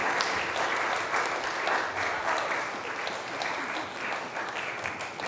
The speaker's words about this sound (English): But come on out here. Come on out here, and everyone just applaud for and thank them for their service.